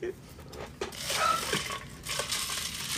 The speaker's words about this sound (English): That's not Alexa, I'm just pouring the Sunny D into a cup.